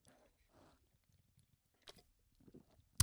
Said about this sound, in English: Hold on. I got to take a sip of my beer before I get into this rant.